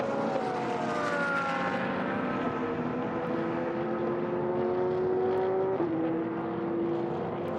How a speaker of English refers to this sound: The fabulous sounds of multiple race cars out on the circuit.